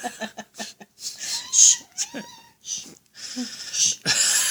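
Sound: cat screaming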